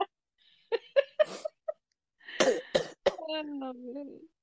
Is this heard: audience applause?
no